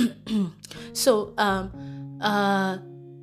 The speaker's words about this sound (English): Excuse me, please. Oh Lord, weather is so cold. I have a cough.